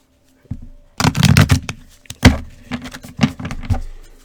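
A deck of cards being shuffled for a card reading, with a quick burst of riffling flutters and soft slaps repeating in a few uneven waves, no voices.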